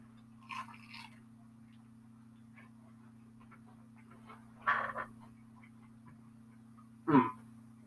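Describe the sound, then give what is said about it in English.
A few crisp crunching bites of a homemade potato samosa, with quiet chewing between them over a steady low electrical hum; no one talks. “Do you think we get a crunch out of this? Yeah, I think we will, too. Let's give it a go.”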